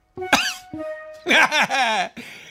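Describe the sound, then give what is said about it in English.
Several loud coughs in quick bursts, strongly voiced and exaggerated, as if a person is theatrically faking a coughing fit, coughing on someone who forgot the 6-foot COVID distancing rule. “You cough on them and say, uh-oh, looks like you have it too now.”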